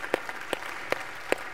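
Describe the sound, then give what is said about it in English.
An audience at Christ Community Chapel, formerly Hudson Community Chapel, applauds to praise God, a steady wash of clapping from many hands, with a few sharp individual claps standing out at an even, regular beat. No voices are heard over it. “The big thing I want you to, you can clap.”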